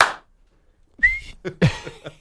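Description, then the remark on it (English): A person imitates a referee's whistle with a short, shrill mouth whistle, one quick blast, followed by a few loud, clipped vocal sounds. “And I remember he does the second one, and then he's just standing there, and the ref's like, whistle right next to his junk, and he goes.”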